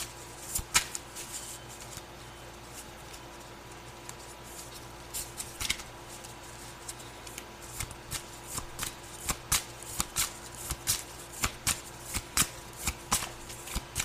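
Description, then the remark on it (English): Playing cards are shuffled, a few scattered crisp flicks at first, then a steady, rapid run of papery snaps through the second half, over a faint low hum. “All right, may I have some more cards, please?”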